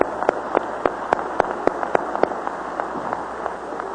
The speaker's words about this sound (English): Let's clap our hands to the Lord, shall we? Praise God.